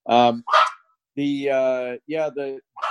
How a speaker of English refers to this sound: Sorry, got the dogs going. Somebody's walking down the street.